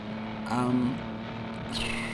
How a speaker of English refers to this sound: The soundtrack might suggest that you're looking at a shot of lots of cars revving their engines